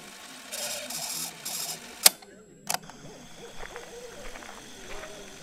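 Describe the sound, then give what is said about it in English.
Eerie forest ambience with soft, wavering owl hoots over a steady hiss, broken by a few bursts of rushing noise and two sharp clicks. No one speaks. “Spooky forest? Sounds like it.”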